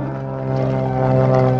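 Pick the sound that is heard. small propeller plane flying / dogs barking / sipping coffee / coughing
small propeller plane flying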